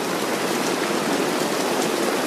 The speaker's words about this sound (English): Wow. That is some rain right there.